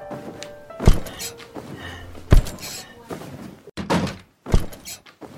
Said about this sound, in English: Dr. Hardy ushered us in and closed the door behind us.